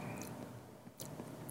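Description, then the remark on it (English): Quiet, wet mouth noises from someone sipping chocolate milk, with a few soft smacking and slurping clicks over a steady background hiss. “I love the mouth noises.”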